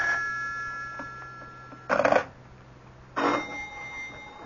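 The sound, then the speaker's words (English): A telephone rings in two separate bursts, each a loud, brief bell-like trill, with a short quiet gap between them and a faint steady hum underneath. “Do something about that confounded phone.”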